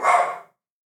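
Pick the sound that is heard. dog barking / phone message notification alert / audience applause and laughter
dog barking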